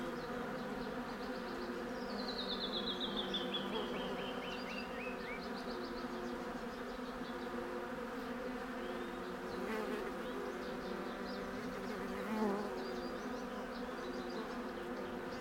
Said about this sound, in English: Mexican buckeyes, with countless magenta-colored flowers that are a magnet for honeybees. Listen to all the activity. It's Bee Buzz Central for sure.